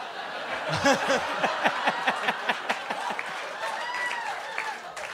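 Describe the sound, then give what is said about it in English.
An audience at a comedy show claps and laughs together for about five seconds, a steady wash of applause mixed with rhythmic bursts of chuckling that stays fairly loud throughout. “By the way, you guys are applauding because you think Lauren means that Trump won't appoint a woman, but Lauren doesn't believe a woman can do the job.”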